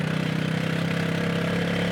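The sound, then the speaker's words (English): A tuk tuk engine from The Original Windermere Tuk Tuk Company drones steadily in third gear as it climbs a steep road snaking up a mountain, its low buzzing note holding a constant pitch with a faint rhythmic pulse, with no voices over it. “THE ORIGINAL WINDERMERE TUK TUK COMPANY”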